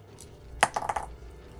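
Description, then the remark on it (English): Dice clatter onto a hard tabletop in a tabletop game roll to hit, landing on 17: one sharp hit followed by a quick series of smaller rattling bounces that settle within half a second, fairly loud. “Okay, go ahead and roll to hit, I guess.”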